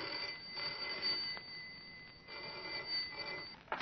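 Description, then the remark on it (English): A telephone rings in repeated bursts, bright, over a steady rushing hiss that fills the short recording. No one speaks. “If the trouble first appeared as the commonplace ringing of a telephone.”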